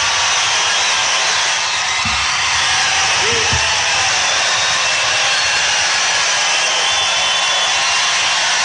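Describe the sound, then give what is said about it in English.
A large crowd at CPAC gives President Trump a standing ovation, a loud, steady, dense wash of clapping that holds for the whole stretch, with a couple of brief shouts rising out of it early on. “Standing ovation.”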